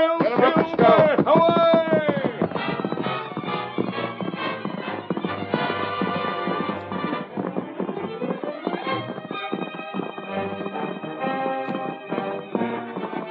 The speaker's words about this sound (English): The masked man and his faithful Indian companion urged their horses to their greatest speed, but swiftly as the two men rode, the fire had almost completed its work when they drew near the ranch house.